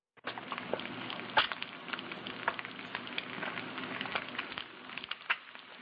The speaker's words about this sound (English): That sound that you hear is the sound of eggs frying in a pan. In other words, don't do this at home.